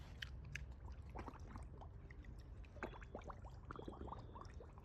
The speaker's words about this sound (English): He's blowing bubbles.